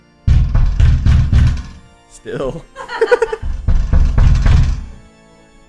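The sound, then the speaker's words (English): Heavy knocks pound on a door in a loud rhythmic series of four or five during a Halloween radio show on BFF.FM, pause while someone laughs and speaks briefly, then another round of booming knocks follows. “Someone at the door.”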